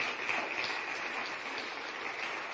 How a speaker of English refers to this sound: That is actually, we're actually ahead of track right now of where we're at, which this is a time where if you want to clap, you clap. That's really good.